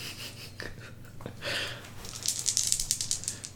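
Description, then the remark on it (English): Small hard dice clatter and click together in a quick, uneven rattle, growing busier toward the end, as the dice are shuffled and dug through by hand. “Where the fuck are all my... We need to buy more new dice sets.”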